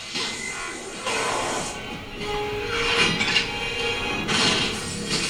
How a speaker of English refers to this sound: Punch for punch, motherfucker. This is so great. That jackhammer punching?